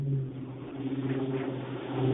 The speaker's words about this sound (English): Yeah, that was real, and the car went by right on beat.